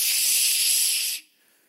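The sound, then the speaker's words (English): A single long, steady shushing sound made by a person, loud, holding for just over a second before cutting off into near silence. “You've been shushed in a deer stand or a deer blind before.”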